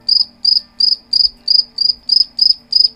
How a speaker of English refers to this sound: Sorry, I like my crickets.